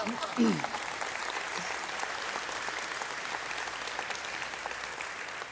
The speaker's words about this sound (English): You can clap for that.